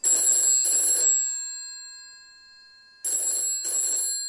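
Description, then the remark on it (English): A telephone bell rings loudly in two double-burst rings, the first fading away into a pause of about two seconds before the second ring begins. No one speaks. “Let it ring. Let it go on ringing. I won't answer it.”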